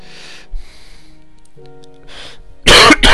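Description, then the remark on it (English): A few soft throat-clearing sounds and a quiet breath, then a sudden loud, harsh cough burst near the end, with no talking. “Told you I'd cough.”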